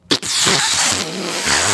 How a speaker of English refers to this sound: Wet fart. That was a bad fart sound, and that's how bad this movie was.